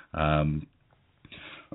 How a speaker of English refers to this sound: excuse me. Had to cough a little bit there.